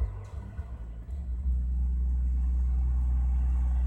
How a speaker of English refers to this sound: I wish there wasn't so much traffic.